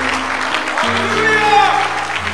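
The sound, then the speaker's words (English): A church audience gives the Lord a hand clap of praise, a dense, steady burst of applause, with sustained low organ or keyboard notes holding underneath throughout. “So can we give the Lord a hand clap of praise?”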